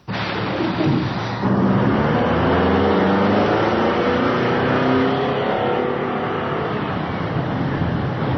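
A heavy bus engine revs up and accelerates, a loud continuous rumble with rising harmonic tones that stays steady for several seconds, with no voices.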